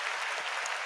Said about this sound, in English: Listen, our last week's winner for the weekly prize for the score prediction was Greg Mason. Round of applause to Greg Mason.